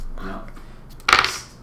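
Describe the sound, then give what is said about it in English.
Dice clatter across a hard tabletop in one short, bright rattling burst, fairly loud, after a faint murmur of voices. “I hate dice.”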